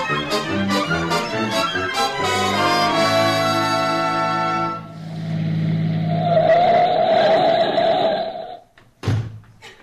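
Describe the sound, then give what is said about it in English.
A car engine revs in quick bursts, then roars as it pulls away, followed by a long, loud screech of skidding tires and a brief thump at the end. “We'll jump in the car and be there in a few minutes.”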